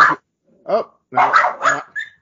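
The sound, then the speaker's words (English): The speaker's dog barks during an interview, a quick irregular run of about five sharp barks with short gaps, ending in a brief higher yelp. “Now it's my dog's turn.”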